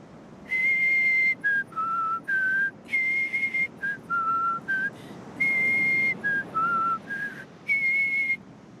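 A whistled melody of clear, steady notes, some held and some short, rising and falling in a simple made-up tune, whistled together by several people at dawn. It is moderately loud, with no talking.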